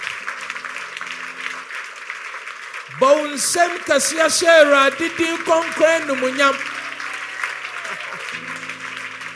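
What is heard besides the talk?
audience clapping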